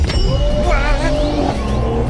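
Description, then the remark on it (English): A taxi's engine roars loudly as the cab driver guns it along the road shoulder, its pitch climbing in a steady, strained whine over a dense rumble that lasts throughout. “He hits the shoulder, guns it.”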